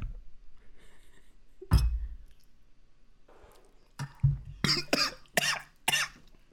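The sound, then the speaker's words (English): A person coughs hard in a string of sharp, wet, choking bursts after a shot of tequila went down the windpipe, ending in a rapid cluster of four harsh coughs, with throat sounds and a sputter in between. “I've never gotten tequila in my windpipe before, and it wasn't my favorite experience”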